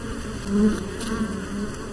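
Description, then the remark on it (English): Steady buzzing of bees hovering, a low droning hum that swells briefly louder midway before settling back to a continuous drone, with no voices. “Because I don't want to do it with your stereotypical images of beehives and things like that, and bees buzzing around the garden and everything.”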